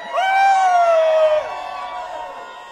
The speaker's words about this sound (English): It's his birthday. Everybody scream!